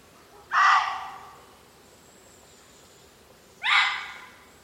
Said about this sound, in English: And then I witness a deer call conversation from both near and far.